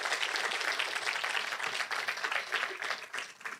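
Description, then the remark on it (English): An audience at Res Church applauds its guests one morning, a dense wash of many hands clapping at an even, sustained level throughout with no voices over it. “And so let's clap for our guests, Res Church, this morning.”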